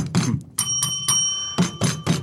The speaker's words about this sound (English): I'm going to build up to it with the bell and the drum.